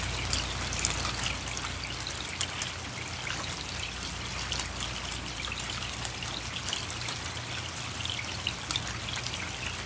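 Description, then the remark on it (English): Steady rain trickles and patters continuously, with scattered bright drips over a low, constant hum, even throughout with no voices. “Feel the sound of the rain touching into every single cell of your body.”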